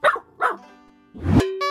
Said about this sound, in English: And this is our puppy, Aggie.